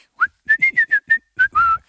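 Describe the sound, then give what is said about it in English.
A man whistles a short, cheerful tune of about eight clear notes, mostly quick and evenly spaced, ending on a longer held note, fairly loud with no talking, as he goes downstairs to cut some molding or baseboard. “You'd hear him whistling going downstairs to cut some molding or some baseboard.”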